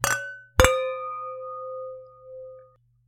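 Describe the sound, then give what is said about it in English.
Wine glasses clink together twice in a toast, bright, the second tap leaving a clear, pure ringing tone that fades slowly over a couple of seconds. “Let's cheers.”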